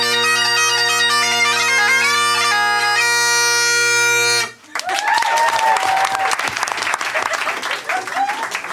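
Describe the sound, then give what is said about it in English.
A few seconds of droning bagpipe music from a demonstration by an expert bagpiper stop abruptly, then an audience breaks into loud, sustained applause that runs to the end with a few cheers mixed in. “Applauding that is like tipping for bad table service.”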